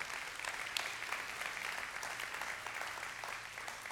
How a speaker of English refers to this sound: Can you help me appreciate our pastor with a good clap?